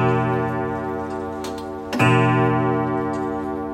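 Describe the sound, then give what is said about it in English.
A Hopkins and Hopkins clock ticks with a few sharp clicks over a steady ringing, tonal hum; there is no talking. “there's a little bit of history attached to this clock and the business of Hopkins and Hopkins”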